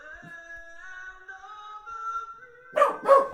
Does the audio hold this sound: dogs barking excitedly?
yes